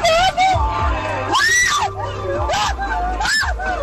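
A passenger screams loudly in several rising and falling bursts inside a moving car that is swerving off the road into a cornfield, over a steady low engine rumble.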